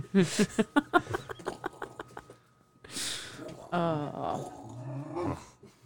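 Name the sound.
dog vocalizing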